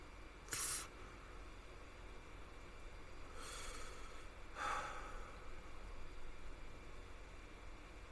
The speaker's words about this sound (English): What are you breathing like that for, you weirdo? Well, I'm looking at pictures of my dog, that's why.